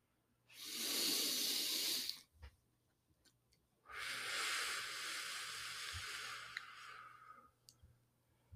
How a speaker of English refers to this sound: We'll take a quick 5 to 10 second breathing break and come back into our episode.